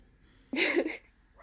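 animal, dog barking

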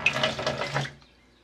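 household object, water being poured out

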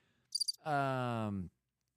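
insect, cricket chirping sound effect

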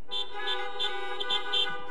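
vehicle, car horns honking

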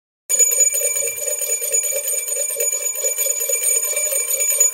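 signal or alarm, bell ringing twice

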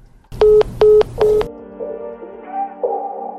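signal or alarm, phone line going dead

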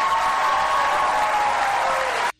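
crowd, audience applause

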